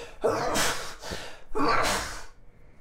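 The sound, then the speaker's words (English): Two sneezes in quick succession, each a sharp inhaled catch followed by a loud, breathy burst, with no talking in between. “That's four.”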